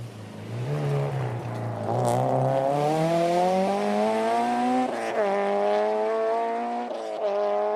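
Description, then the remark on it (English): A rally car engine roars steadily as the car speeds past a corner on a rally stage, way down the field, its pitch climbing and resetting with several gear shifts. No voices can be heard. “Finally, way down the field, they pass us by.”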